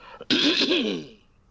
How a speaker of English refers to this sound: At the sound of me clearing my throat, I want you all to open your eyes and say hello to the new world.